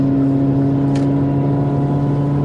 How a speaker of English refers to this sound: And we hear the engines rolling.